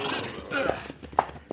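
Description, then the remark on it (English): Horses, one called Diablo, are reined to a halt on a mesa, hooves knocking in a short uneven run, with a whinny cutting through near the end and voices murmuring underneath. “All right, down off your horses, you two.”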